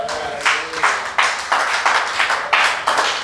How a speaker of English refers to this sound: If you want to clap, clap better for Jesus. You are not clapping for me.